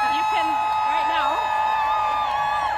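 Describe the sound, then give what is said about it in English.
A massive crowd protesting against President Trump yells steadily, many overlapping voices shouting at once in a continuous, fairly loud wash of sound with no clear individual words. “You can hear some of the yelling.”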